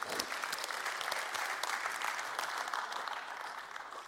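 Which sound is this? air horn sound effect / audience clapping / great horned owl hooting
audience clapping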